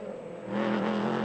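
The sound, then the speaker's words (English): Dave House's race car engine drones steadily in the pit lane, then swells louder about halfway through as it accelerates towards the pit exit, its sustained tone holding strong to the end. No one speaks. “And Dave House now gets things going again and drives towards the pit exit.”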